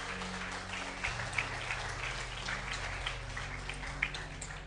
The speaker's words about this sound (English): Guys, can we give Pastor Josh a round of applause? That was awesome.